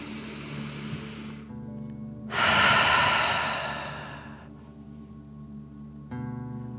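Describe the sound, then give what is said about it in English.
A slow, audible inhale through the nose filling the belly, followed by a longer, louder, forceful exhale as if breathing fire, a deep 'dragon breath', both breathy, with soft steady background music underneath and no talking. “Remember to breathe in through your nose, filling up your belly, and then out pretending you are breathing fire.”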